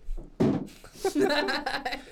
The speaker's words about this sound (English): It was gentle, but I kicked the chair.